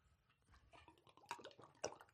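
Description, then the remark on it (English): Someone drinks water noisily, with a quick run of wet gulps, slurps and swallowing clicks, the loudest bursts near the end, and no talking. “It's so obnoxiously loud the way With you drink a water.”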